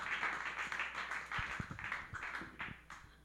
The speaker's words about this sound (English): put your hands together for Mr. Ben Kim, everybody. Give a big round of applause.